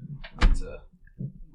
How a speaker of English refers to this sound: I'm creaking away on this chair.